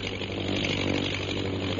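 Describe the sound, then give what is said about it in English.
A steady, droning propeller engine of a fighting plane with a mounted gun, circling overhead, roars without a break, a low harmonic hum beneath a dense buzzing whine that holds even in loudness, with no voices. “Jim, the plane's circling.”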